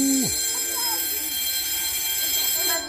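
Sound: bell ringing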